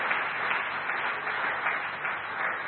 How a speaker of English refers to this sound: If you believe it in your heart, give a clap offering to our Lord as a thanksgiving.